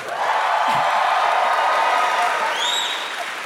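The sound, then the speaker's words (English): A crowd applauds loudly and steadily throughout, a dense wash of clapping mixed with cheers, and a couple of high whistles sweep upward near the end. “You got some applause this time.”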